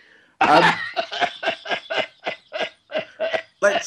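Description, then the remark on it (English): A sharp, loud cough bursts out, then a rapid run of about ten short, rhythmic coughing hacks that sound fairly loud, with no talking. “But it's not all tightly scripted, including the coughs.”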